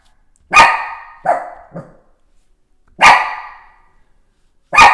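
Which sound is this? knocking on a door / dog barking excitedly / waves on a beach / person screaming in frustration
dog barking excitedly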